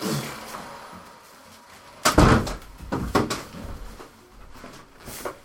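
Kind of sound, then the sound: household object, door being shut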